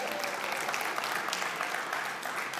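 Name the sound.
audience applause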